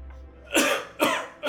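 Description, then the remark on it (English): Three sharp, breathy coughs in quick succession, fairly loud, each a short harsh burst with brief pauses between them and no talking around them; the coughing of the character Katari, who is a bit feverish. “Katari starts coughing.”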